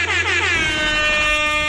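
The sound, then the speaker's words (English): A loud, sustained air horn sound effect blares for nearly two seconds, its brassy harmonic tone shifting slightly partway through, with no voices underneath. “Let me get some air horns for that.”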